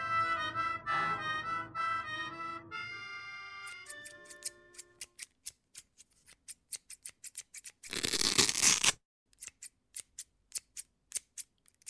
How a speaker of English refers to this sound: I'm cutting my garter belt into thin strips so I can post a rudimentary message on the window